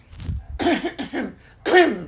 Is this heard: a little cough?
yes